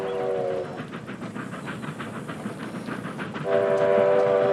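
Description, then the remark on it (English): A train thunders past, its horn blaring at the start and again at the end, with a heavy rumble and rhythmic clatter of wheels on the rails in between, as someone is dragged off the train tracks. “Like Chris drags Teddy off the train tracks to save his life and immediately wants peace when Teddy gets mad.”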